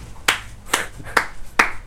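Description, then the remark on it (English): Four evenly spaced hand claps, crisp and moderately loud, with a slow steady rhythm and no voices in between. “I start clapping.”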